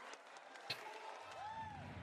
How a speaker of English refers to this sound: Oh, wow. This is a loud crowd. I don't like them. They're just all yelling.